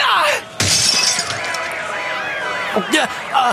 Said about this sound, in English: My anger toward the underdogs made me accidentally smash that car! This is arguably more their fault than mine!